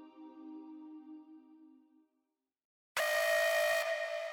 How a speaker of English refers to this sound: I awoke to an alarm. I didn't even know we had this alarm. I'd never heard the sound before.